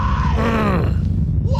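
A man screams in a strained, wavering groan-like yell, rising and then sliding down in pitch, loud and sustained for over a second before a brief second cry begins.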